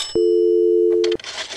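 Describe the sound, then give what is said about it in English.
A payphone in use as a quarter is put in to call the police: a brief click, then a steady one-second telephone tone that cuts off into a short burst of clattery mechanical noise, as if the handset or dial is being worked. “Well, I guess I better call the police and report this. Let's see. I got the number here. Got a quarter.”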